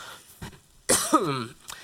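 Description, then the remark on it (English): A person coughs and clears their throat: a small throaty rasp, then one sharp, loud cough with a rough, scraping tail, followed by a faint breath. “If anyone has a cough drop, and you want to donate that to me immediately, that would be phenomenal.”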